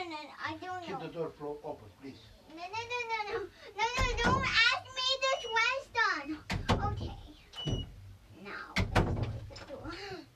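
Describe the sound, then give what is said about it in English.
A door is pushed shut with a few solid thuds and knocks while a child and an adult keep talking over and between the bumps. “Keep the door open, please.”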